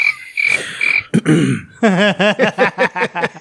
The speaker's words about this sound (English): You know, John got the first use of the cricket since I've brought back the sound.